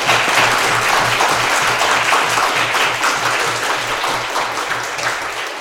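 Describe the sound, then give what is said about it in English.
A crowd breaks into sustained applause, a dense, steady wash of many hands clapping at an even loudness for several seconds, easing off slightly at the end. “So let's hear a warm round of applause”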